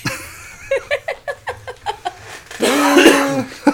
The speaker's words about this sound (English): Like 90% of the year, you're coughing up something.